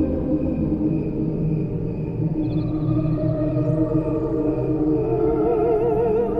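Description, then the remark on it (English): A chorus of crickets, slowed into layered, mellow sustained tones that waver and climb in pitch, with no voices throughout, sounding almost like a humming choir. “They were saying cricket words. I kept thinking, oh, I almost can understand them. It's a nice, mellow tone.”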